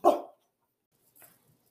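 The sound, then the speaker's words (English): A Weimaraner dog at a house in Seattle gives one sharp, loud bark, followed about a second later by a softer, shorter huff or second bark, with silence around them. “I am at my aunt and uncle's house in Seattle, and the dog is a Weimaraner.”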